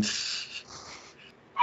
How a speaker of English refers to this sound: Anyway, if you haven't heard the dog in the background already, seems as though you're recording from an undisclosed location.